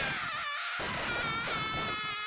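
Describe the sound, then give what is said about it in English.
A short, eerie musical sting for a scary segment, of sustained, wavering high tones that sound like a ghostly wail, with an abrupt shift early on and steady loudness throughout; no one speaks. “All right, let's get the sting going for that. Here's the sting.”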